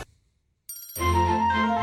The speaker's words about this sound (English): I like that little ring of the bell at the start. That's actually a cool little touch when you actually really listen to it.